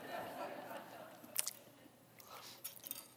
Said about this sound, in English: I'm telling you, you don't know peanut butter until you've actually tried it. And so I'm gonna try some because I'm kinda hungry, so, you know. Hopefully I can talk after this, so. Ooh. I might need a bottle of water, but.